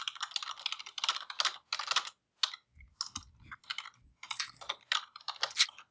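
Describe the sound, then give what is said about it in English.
Rapid, uneven clatter of keys on a computer keyboard, fairly quiet, with bursts of typing broken by brief pauses and a few soft low thumps. “I will give you a freebie because I was still typing when you did that.”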